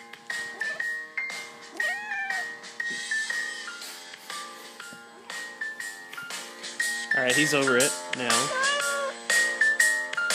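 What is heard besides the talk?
cat meowing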